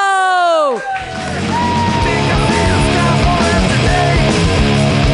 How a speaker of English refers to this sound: Clap your hands together for Billy Reno!